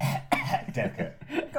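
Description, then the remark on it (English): A person coughs theatrically into a handkerchief in a quick series of four or five harsh, throaty bursts, slightly muffled, with no other sounds around it. “Coughing into the hanky.”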